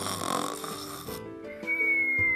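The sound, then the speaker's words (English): Steady snoring of rabbits with no one speaking: a rough, buzzy snore on the inhale gives way to a thin whistling tone as the breath goes out. “Oh, the other rabbits were all snoring.”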